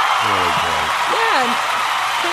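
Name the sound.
audience applause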